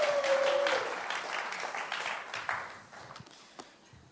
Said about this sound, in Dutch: Thanks, guys. Why don't we give the band a hand? Laten we de band een applaus geven.